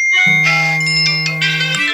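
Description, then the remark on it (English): A loud mobile phone alert tone blares, a harsh steady electronic drone with rapidly pulsing, beeping overtones, sounding alone for about two seconds; a police geo-targeted SMS alert sent to all mobiles in an area where a man went missing. “The alert went out to all mobiles in the area where Bill went missing.”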